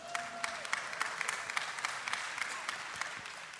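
An audience claps steadily, a dense patter of many hands with sharp individual claps standing out, holding an even level throughout without a clear rise or fade.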